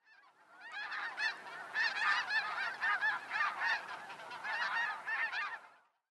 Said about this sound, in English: It's the snow geese, passing overhead in uneven V's.